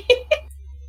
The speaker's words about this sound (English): that's a cat. That's so much. That's a wild noise. What is that?